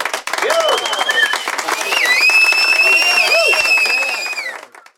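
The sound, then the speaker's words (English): An applause sound effect: a crowd applauding with steady, dense clapping for about five seconds, mixed with cheers and high whistles, before quickly fading out at the end. “Have a little applause sound effect.”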